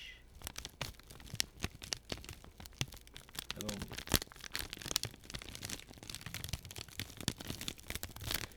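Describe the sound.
Continuous crackling and crinkling of parchment paper being crumpled, with dense irregular snaps throughout and a voice briefly speaking over it.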